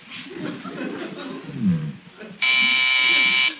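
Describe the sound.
A doorbell rings with a loud, steady electric buzz lasting about a second, sounding right after a stretch of murmured talk and chuckling.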